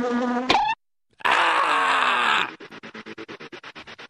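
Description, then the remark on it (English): A loud swarm of killer bees buzzes in a dense, droning mass, briefly cuts out, then returns before breaking into a rapid, fluttering pulse of rhythmic buzzing bursts. “killer bees, man. They swarm you.”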